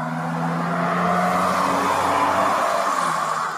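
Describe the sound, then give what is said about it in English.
A car drives past outside, its engine a steady, fairly loud hum with a broad road rush that holds for a few seconds before fading slightly. No one is speaking. “oh, sorry, there's a car driving by.”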